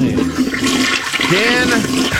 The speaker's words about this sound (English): Where did you clip that toilet flush? Yeah. Was that something you recorded from your phone? Yeah, he went to the bathroom and did it himself. That's legit flush. That's where right it was. There. Yeah, very, very loud.